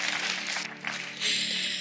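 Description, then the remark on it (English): An audience claps in a dense, steady wash of applause, briefly thinning before swelling louder again toward the end, with no voices heard. “Thank you for clapping.”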